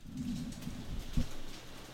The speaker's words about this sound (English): Oh, it started raining. It has. Hang on, let's just go quiet for a moment. I'm going to turn the gain up.